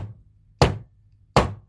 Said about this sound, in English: Okay, now let's get to our opening arguments. Bang the gavel.